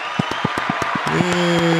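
Quick, steady hand clapping, close and loud, about eight claps per second, then a sustained voice cheers over the continued clapping near the end.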